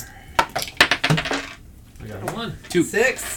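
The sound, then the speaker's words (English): A handful of coins clatters onto a hard table, a quick burst of bright metallic clinks and rattles that settles within a second, followed by people talking. “Let's do some coins tonight.”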